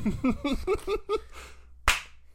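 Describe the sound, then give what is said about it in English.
A single sharp hand clap rings out alone near the end, crisp and bright, after a run of short voiced, laugh-like syllables that stop just before it. “Okay, I'll give you the clap.”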